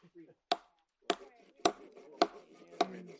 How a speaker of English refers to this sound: The rest of us hunt for dry kindling and chop wood for a fire.